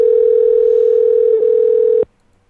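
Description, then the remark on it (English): A steady, loud electronic Google Voice phone tone, heard while a call connects, holds one unbroken pitch for about two seconds, then cuts off abruptly into near silence. No voices accompany it. “tone, and Google Voice will try to connect you.”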